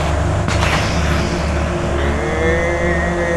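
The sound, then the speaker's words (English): A heavy truck engine rumbles loudly and steadily, its low drone shifting slightly in pitch as the truck moves slowly into position to park at a gate, with no voices present. “Parking that truck there is not going to keep them out!”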